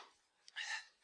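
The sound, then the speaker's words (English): A single sneeze: a quick sharp catch of breath followed by a hissy, breathy burst lasting about a quarter second, then quiet. No one speaks. “Bless you.”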